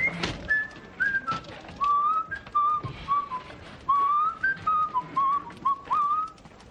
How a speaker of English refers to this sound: … whistling the same tune as me.